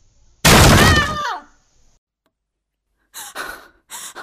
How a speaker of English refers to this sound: Oh, did you tear that door off the hinges?